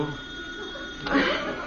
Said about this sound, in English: Dad, the phone's ringing.